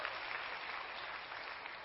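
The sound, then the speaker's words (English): An audience claps together in steady, sustained applause, giving glory to God for the gospel of Jesus Christ, a dense wash of many hands that holds at an even level throughout, with no voices standing out. “You can clap for that if you want to.”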